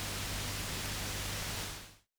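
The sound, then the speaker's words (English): A steady, featureless wash of broadcast static with a faint low hum underneath, loud, holding for about two seconds before cutting off abruptly into silence. “Splintery figures continued to leer at me and retreat into shadow until finally the crying and the grate of the bed fused with each other into the featureless humming of broadcast static.”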